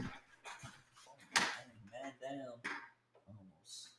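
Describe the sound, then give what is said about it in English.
Short bursts of airy hiss and mechanical clunking as a person raises the seat of their office chair at a computer desk, mixed in with someone talking. “I'm about to adjust my seat.”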